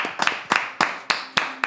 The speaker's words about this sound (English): Hey, yeah, hold on. That's a clap, dude.